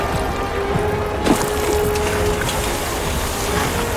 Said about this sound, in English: You others, let's find some water to douse the flames. On it. How can we help? Gather as many buckets as you can. Find water from any source. We have to stop this fire.